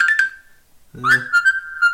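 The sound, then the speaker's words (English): A whistle notification tone from the KakaoTalk messaging app: a steady, high whistled note, a short pause, then a quick upward swoop that settles into another long, even pitch. It is clear and fairly loud, with no talking. “I like the whistle.”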